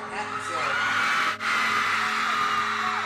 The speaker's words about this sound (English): Just like endless screaming.